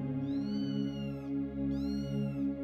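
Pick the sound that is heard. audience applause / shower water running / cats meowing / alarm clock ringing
cats meowing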